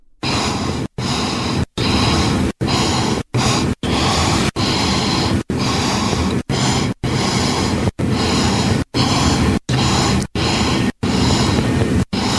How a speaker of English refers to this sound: So we thought it'd be a good idea to compile all of those sniffs. Okay. And basically 20 times, 20 sniffs in 15 seconds is how we managed to put all this together.